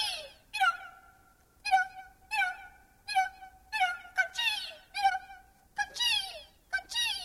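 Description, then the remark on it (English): In Louise Lawler's 1972 piece Bird Calls, a human voice imitates bird calls with a rapid series of about ten shrill, warbling cries, some held as steady high whistles, others bending upward, loud and unaccompanied. “This is Louise Lawler, a piece from 1972 called Bird Calls.”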